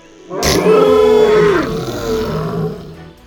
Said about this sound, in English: let out a satisfied roar and wagged his tail, making the tube slowly rotate and gently bump off of a few mossy rocks.